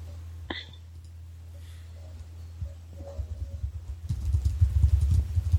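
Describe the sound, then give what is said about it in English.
Rapid, irregular typing on a computer keyboard starts partway through and grows busier toward the end, soft clicks layered over a steady low electrical hum, with a sharper tap near the start. “And then you can go ahead and just start typing.”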